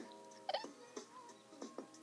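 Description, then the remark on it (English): A few sharp hiccups from one person, fairly loud, spaced unevenly across a couple of seconds with a faint hum between them. “Oh my god, I got hiccups.”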